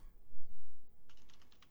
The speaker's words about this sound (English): Oh, he's typing away furiously.